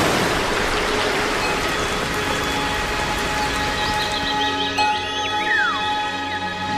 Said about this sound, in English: The slightest breath of a breeze, and this watery dust forms into drops. This is the origin of the rain which rushes down in countless waterfalls.